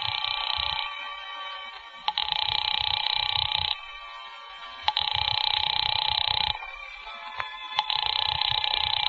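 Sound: telephone ringing unanswered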